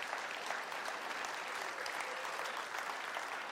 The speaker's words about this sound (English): Man, they don't get much appreciation. Would you give them a round of applause back there, the tech team people?